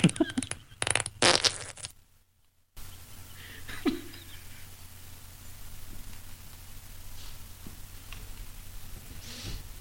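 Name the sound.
fart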